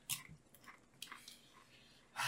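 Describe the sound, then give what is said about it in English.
Crunchy chewing of a spicy snack from a bag, with several sharp bites and crackles in an irregular rhythm, some louder bursts at the start and end, with no talking. “Yeah, put it all in your mouth at once and then chew it.”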